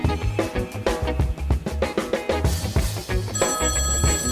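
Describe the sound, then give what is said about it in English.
A telephone, a listener feedback phone, rings loudly, its ring a busy, repeating musical pattern that keeps going for several seconds with no one speaking. “Sam, can you get that? It's the listener feedback phone.”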